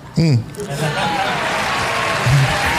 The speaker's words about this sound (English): Applause? That was applause there? I was ready for the boo.